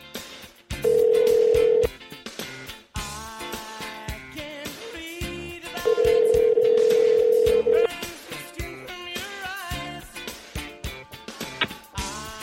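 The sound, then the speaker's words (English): A phone call rings out on the line: two long, steady ringback tones a few seconds apart, fairly loud, with busy music-like sound filling the gaps between them. “Come on, phone. Here we go.”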